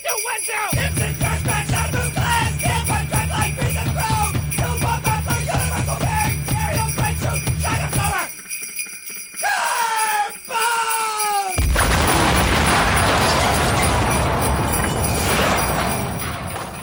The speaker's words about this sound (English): And I just decided now, that was the Christmas version with the jingle bells on top of it.